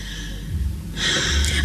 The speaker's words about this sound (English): Your breathing has been changed.